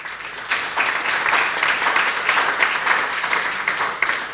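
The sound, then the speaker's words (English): An audience at an evening speaker event applauds steadily for a few seconds, a dense, even wash of many hands clapping at once, moderately loud, with no talking over it. “You can applaud yourselves in a second, but please save most of your applause for our fantastic speakers tonight.”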